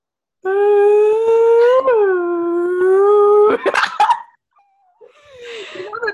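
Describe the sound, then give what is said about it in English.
A single voice imitates a Canadian police siren, holding a loud, sustained wailing tone that dips and then climbs upward for about three seconds before breaking into breathy noise and trailing off. “How does the, like, police siren sound in Canada?”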